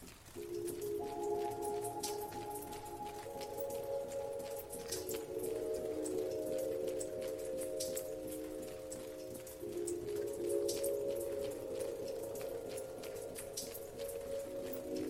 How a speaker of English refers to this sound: It was the showers, the shower heads. They were all dripping. A drop every few seconds. Nothing special, except that all 12 showers were dripping. Not at the same time, but in sequence.